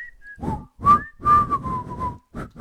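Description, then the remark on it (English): A person whistles a short, bouncy jingle melody from an Enzyte commercial, a handful of quick notes followed by a longer held tone, with breathy, slightly rough puffs around each note. “There was the song. It was a whistle song.”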